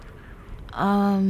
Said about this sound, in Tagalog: Oh, may nag-text yata sa'yo. Oo nga. Baka sa amin to.